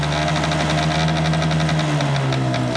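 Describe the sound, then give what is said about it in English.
A 1990s Honda Vision scooter engine runs with a steady buzzing drone and rapid rhythmic pulsing, its pitch dipping slightly toward the end as it revs and settles. “It cannot be a motorbike. It has to be a Honda. It has to be a Honda Vision.”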